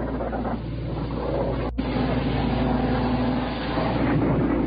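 A warplane's engines drone steadily overhead, a loud, continuous low rumble with a brief break partway through and no voices.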